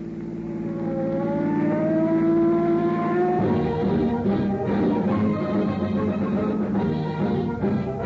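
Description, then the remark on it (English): A loud street traffic scene on the busiest street of a large western city: an engine revs up with a rising whine, then a dense, continuous roar of cars streaming past, with no voices. “On the busiest street of the West's largest city, streams of traffic speed endlessly by.”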